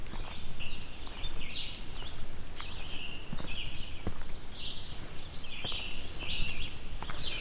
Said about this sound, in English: As you can hear right now, I'm surrounded by birds. Red-eyed vireos, scarlet tanagers here as well. And probably, yeah, there's a cicada as well too,